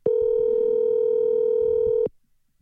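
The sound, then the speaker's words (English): A telephone ringing tone on an outgoing call, one steady electronic burst lasting about two seconds, loud as if heard through the handset, then silence. No one speaks. “I'm going to see if I can get this thin-skinned twat on the phone.”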